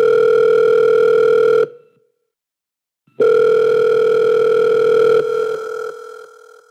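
A telephone line tone hums steadily as a phone call is dialed, cuts out for about a second and a half, then sounds again and slowly fades. It is loud, with no voices.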